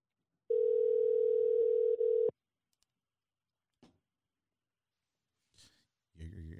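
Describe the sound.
A steady, loud telephone dial tone holds for about two seconds as someone makes a phone call, then cuts off, followed by a few sparse clicks and a brief burst of what sounds like a voice on the line at the end.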